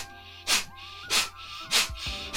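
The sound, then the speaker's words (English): Four sharp, forceful nasal exhales in an even rhythm, each a short hissing puff of breath, done as breath-of-fire (Kapalbhati) breathing with the navel drawn toward the spine. No one speaks. “You're exhaling sharply in and out through the nose.”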